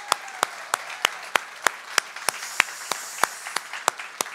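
A church audience on a Sunday applauds the commissioning of its first full-time, long-term missionary with the International Mission Board, with a steady, rhythmic beat of sharp claps, about three per second, over a softer wash of many hands. No one speaks.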